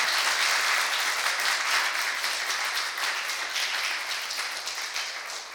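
A crowd applauds steadily, a dense wash of many hands clapping that holds loud and even throughout, easing off only slightly toward the end. No one speaks.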